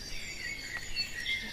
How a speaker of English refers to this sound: The blackbird is the one with the melodious song, and you hear in the background some cheeping. That's the robin.